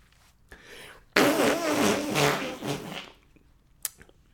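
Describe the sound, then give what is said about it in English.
A loud, sputtering mouth-made fart noise blows for about two seconds, buzzy and staying on much the same note, bracketed by a couple of small clicks before and after. “There was no dimension to those fart noises there, you know?”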